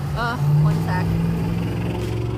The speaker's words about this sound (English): It gets really loud, but it's because I'm recording outside by the road, but I don't know, I just didn't feel like staying inside today.